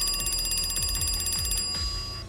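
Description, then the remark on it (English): A telephone in a house rings again with a loud, rapid metallic trill that carries on steadily through the short stretch, with no one speaking. “Not long after the first call, the phone rings again.”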